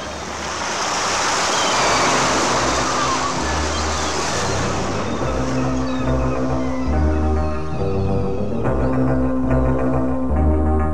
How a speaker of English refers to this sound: Moments later, the cacophony of its engines was conveniently engulfed in the sound of surf and the calls of seagulls.